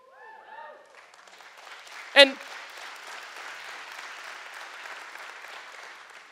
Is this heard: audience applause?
yes